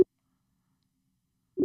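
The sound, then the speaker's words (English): A phone's ringback tone while placing a call: a steady, low-pitched hum cuts off right at the start, then silence, then the next ring begins at the end. No one speaks. “Yeah, I'm going to call up my man Lonnie, man.”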